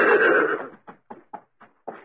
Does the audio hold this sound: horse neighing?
yes